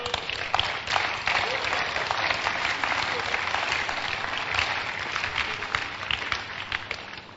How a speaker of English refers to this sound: You are not clapping well. Yes. Or I shouldn't tell you to clap well.